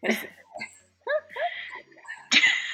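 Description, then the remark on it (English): A couple of sharp coughs from ragweed and mold allergies, one at the start and a harsher one near the end, with throaty voiced sounds between them. “Is it like the coughing and sniffing and stuff?”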